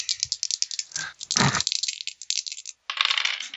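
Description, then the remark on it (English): Dice rolled during a tabletop role-playing game rattle and clatter across a hard surface in a quick flurry of sharp clicks, pause briefly, then tumble again. Fairly loud, with no voices. “I'll make a moxie to re-roll that, because that's an 80.”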